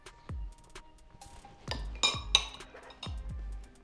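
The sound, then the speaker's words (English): Metal spoons clink together several times in an irregular rhythm in a toast, bright taps with short ringing tails, alongside soft low thumps and light handling noise. “We're gonna spoon it, and we're gonna see what happens.”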